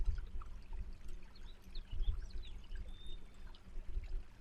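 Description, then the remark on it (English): A creek burbles steadily, its water cascading over rocks in a continuous gurgle with low splashy pulses. Faint bird chirps flicker in the background and no one speaks. “And lo and behold, you discover a beautiful creek that is gurgling and chuckling by. The water cascades constantly over the rocks like a dance.”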